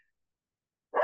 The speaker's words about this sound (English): Excuse me. Gesundheit.